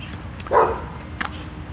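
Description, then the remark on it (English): A dog barks once in a backyard, a short sharp woof, followed by a fainter clipped sound a moment later over a steady low background hum. “Noisy backyard dog.”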